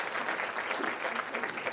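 A crowd applauds steadily, a dense wash of many hands clapping at an even, fairly loud level throughout, with no clear pause or single claps standing out.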